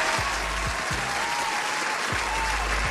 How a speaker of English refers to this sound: Hold on, let me clap for Mama real quick.